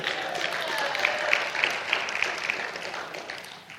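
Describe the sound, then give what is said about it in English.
A church audience applauds its senior pastor with steady, dense clapping that holds for a few seconds before easing off, with a handful of sharper claps standing out in the wash of sound. “Clap for him.”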